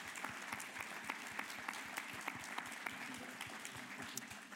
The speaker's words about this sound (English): Can you give all round of applause, please?